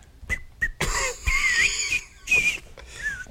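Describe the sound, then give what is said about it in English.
A few short, breathy whistled notes drawn in on the breath, airy and wavering in pitch, with brief pauses between bursts and no talking. “I can't whistle, dude. I have to. I whistle the other way.”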